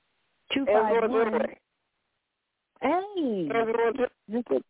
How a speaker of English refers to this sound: Yeah, your phone is kind of breaking up a lot.